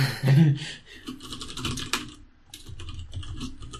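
Rapid typing on a blank computer keyboard, with a dense, steady stream of crisp key clicks and no voices.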